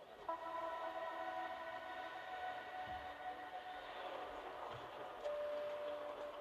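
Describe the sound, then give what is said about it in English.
A train rumbles steadily at a station, with sustained high whining tones like squealing brakes or a drawn-out horn riding over the constant mechanical noise. No one speaks. “After people get off the train, most of them come up here.”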